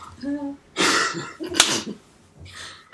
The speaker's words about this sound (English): Hold on, I have to blow my nose, guys. Okay.